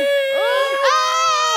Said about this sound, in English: We heard … do a call and response. And we were compelled to scream.